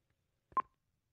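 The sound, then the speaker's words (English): A single short electronic beep with a soft click as a button is pressed on a telephone keypad to dial, in an otherwise quiet moment. “Dial your operator. Let me get the phone.”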